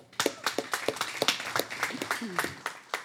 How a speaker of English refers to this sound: And she has a great word for you today. So let's give her a round of applause as she comes.